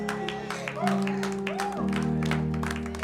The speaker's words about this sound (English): Clap for Jesus.